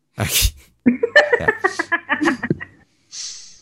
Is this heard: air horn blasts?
no